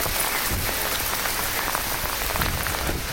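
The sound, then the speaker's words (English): Torrential rain pours down heavily and steadily, a dense, loud hiss of water drumming on surfaces, with no voices. “I think it's all very well and good, you know, they're all very well and good and interesting, but what they really need is a presenter to be presenting it while he's escaping a torrential rain.”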